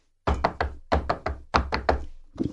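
Knuckles rap on a wooden table, knocking on wood in a set personal pattern: three quick knocks, repeated three times, crisp, with one more knock starting at the end.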